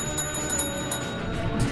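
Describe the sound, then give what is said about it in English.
A bell rings continuously with rapid repeated strikes, producing a bright, steady metallic ringing that fills the whole moment, with no voices over it. “And you guys both have to ring the bell at the same time.”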